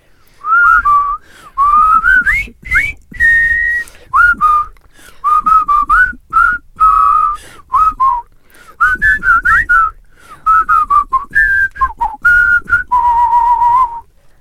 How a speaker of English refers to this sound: It's always nice to whistle on a podcast. You don't get enough, do you? It's really nice. It's really nice.